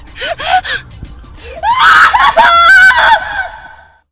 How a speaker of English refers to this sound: Hey, Sheriff. Why'd she keep screaming the whole time? That crazy girl done drove herself hoarse. I couldn't stand it.